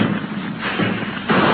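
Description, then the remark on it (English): A loud volley of rifle fire from soldiers shooting at attacking Indians in the mountains, many shots blurring together into a rough, crackling roar that swells twice over about a second and a half, with no voices. “A volley in that direction, men.”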